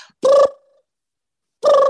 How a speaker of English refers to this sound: And when the show was over, when he and I were finished with our contracts and we weren't making All in the Family anymore, at the most random times, my phone would ring in my apartment in Westwood near UCLA.